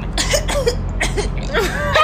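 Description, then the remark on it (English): A person fakes a string of coughs, about five short, raspy bursts in quick succession, a staged imitation of coughing all night as a child to stay home from school, with no talking. “I stayed up all night coughing.”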